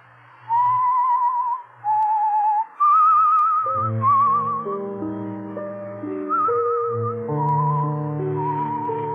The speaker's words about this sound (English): You whistle yourself like that very often? Yes. Especially when I'm working on a new composition.